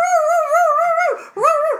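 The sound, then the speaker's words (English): A woman sings a long, wavering, howl-like note with strong vibrato, drops away briefly, then swoops into a second rising cry, barking like a dog in song, loud. “She literally barked on television performing this song for Carson Daly.”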